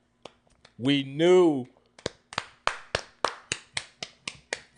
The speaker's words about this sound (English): Let's give a round of applause for our nigga Franklin.